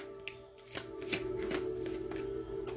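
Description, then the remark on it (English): A deck of cards is shuffled, with a run of crisp, papery riffling bursts spread over a few seconds, over a steady low background hum. No one speaks. “You know these cards, y'all, by now.”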